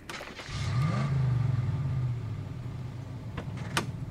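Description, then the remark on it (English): A truck engine starts up and revs, its low rumble rising in pitch then settling into a steady drone as the truck is driven over to a shipping door to back in, with a couple of sharp clanks and a door-like bump near the end. “drive the truck over.”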